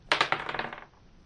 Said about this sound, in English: dice kept falling off the table and going into weird places on the twos and fives, and now we've finally got one and it's a seven.